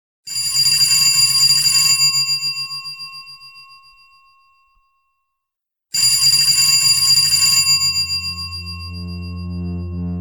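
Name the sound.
telephone ringing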